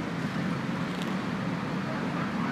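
A steady outdoor wash of light road traffic at the intersection of a bridge in heavy rain, with a continuous low rumble and no distinct individual vehicles standing out.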